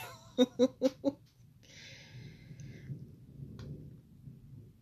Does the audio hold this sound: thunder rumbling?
yes